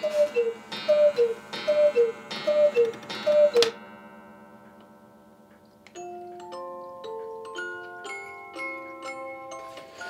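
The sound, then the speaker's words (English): A gigantic hand-carved Bavarian cuckoo clock hanging in a bedroom calls five times in quick, even two-note hoots, each with a mechanical whir, then its bright tinkling music-box melody plays on its own, clear. “The latest additions to his collection, two gigantic hand-carved Bavarian cuckoo clocks, hang in his bedroom.”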